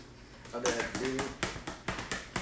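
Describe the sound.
A rapid series of sharp, close slaps, roughly eight or nine smacks in quick uneven succession, like a fly swatter whacking skin, with a brief voice sounding underneath early on.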